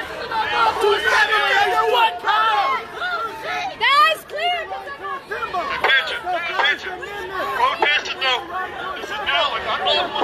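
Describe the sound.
Dense crowd chatter from many overlapping voices at an outdoor protest against racial injustice outside a courthouse, a steady loud hubbub with occasional raised shouts cutting through, continuing throughout.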